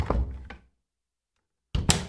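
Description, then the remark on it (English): A door is handled and opened, with a heavy thunk and rattle, then a pause of silence before another solid clunk of the door moving. “Open that door, Slim.”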